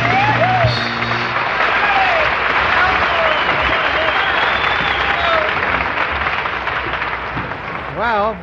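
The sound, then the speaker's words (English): An audience applauds a band playing toy instruments, loudly and steadily for about eight seconds, a dense wash of clapping with scattered whoops and voices rising through it before it starts to fade. “Judging by the applause, looks like we'd better throw away our regular instruments and play on toys from now on.”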